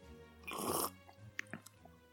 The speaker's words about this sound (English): You will definitely hear me sip from my whiskey, maybe a little bit like this.